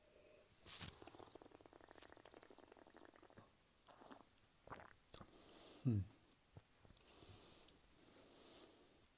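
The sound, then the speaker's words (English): Someone takes a quiet sip of Santa Teresa rum, bottled at 40%, with a brief airy slurp, soft mouth and lip smacks, and a gulp-like swallow a few seconds later; no one talks. “Let's give it a sip.”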